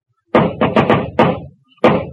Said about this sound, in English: I hear him on the stairs. Oh, maybe just one of the neighbors. No, it's the ghost coming for me. In a minute, he'll knock on that door. Oh, if you're going to knock, knock.